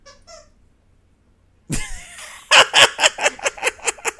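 Junebug, a dog, squeaks her squeaky toy: it squeaks faintly twice, goes quiet, then lets out a loud drawn-out squeal and a quick, rhythmic run of about eight sharp, high squeaks. No one talks.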